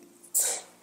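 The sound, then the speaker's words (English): A single sneeze bursts out suddenly: a sharp, hissy, bright expulsion that fades quickly over a fraction of a second, with no talking around it. “Bless you.”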